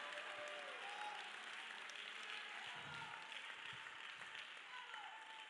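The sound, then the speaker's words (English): A worship crowd claps steadily in praise for several seconds, a dense, continuous wash of many hands, with faint voices calling out beneath the applause. “Lift your voice. Clap your hands.”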